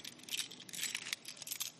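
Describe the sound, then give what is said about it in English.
A bunch of keys jangles steadily for about two seconds, a bright, rattling metallic clinking with irregular little bursts and no voices. “Would he ever call me to surrender this key?”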